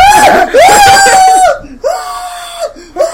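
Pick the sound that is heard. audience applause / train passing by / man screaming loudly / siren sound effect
man screaming loudly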